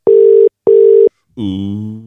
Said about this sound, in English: I don't think he's gonna answer this phone. He ain't gonna answer. But we can give it a try.